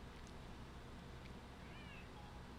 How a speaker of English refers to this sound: he's meowing a lot.